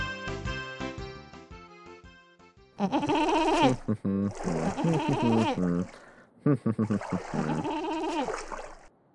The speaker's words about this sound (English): Move over. We got goats.